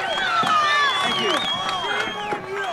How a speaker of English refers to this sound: Because remember, Ryan goes on stage without Trump, and he got booed.